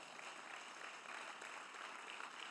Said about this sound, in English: You can clap at that. Thank you, one clapping person.